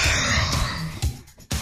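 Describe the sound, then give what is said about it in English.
A person yawns: a long, drawn-out breathy vocal stretch, followed by a couple of short exhaled puffs as it trails off. “Here, let me yawn.”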